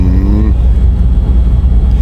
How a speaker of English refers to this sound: We're on the move at the moment. I woke up as the bus started moving, and you could probably hear the sound of the tyres thrashing on the asphalt. You could probably hear the thrum of the air conditioning unit that's immediately above me